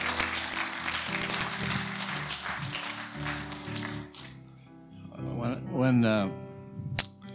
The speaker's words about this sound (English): All right, let's give them all a big clap. Okay, hold on. Give them a big clap, and then we'll do this.